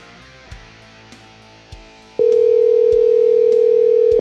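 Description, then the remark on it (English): A few soft taps, like numbers being dialed on a phone, then a loud, steady telephone ring tone sounds for about two seconds before cutting off. No one speaks. “so I'm going to give him a call, see what he's up to, and how the release week has been for him.”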